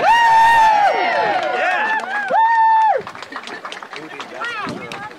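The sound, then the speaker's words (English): A crowd cheering at an event in Marceline, Missouri, on June 3rd, with loud sustained whoops and rising and falling yells for about three seconds, then a softer mix of overlapping voices and scattered claps. “You can cheer for us.”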